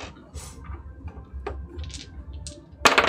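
Three six-sided chaos dice rattle and clatter across a table in a few scattered clicks during a tabletop role-playing game, ending in a louder burst of tumbling near the end, with no voices.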